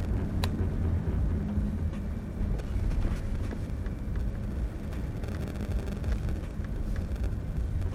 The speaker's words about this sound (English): I really hope they didn't hear my car.